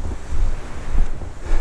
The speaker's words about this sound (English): I can hear the turn of the tide here. You do get a little push when it goes from being a ebb to the flood just on low water.